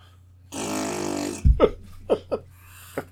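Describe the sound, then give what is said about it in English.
A loud, buzzy fart noise stretches for about a second, followed by a few short, sharp voiced bursts and a quieter blip near the end. “Yeah, fart noise.”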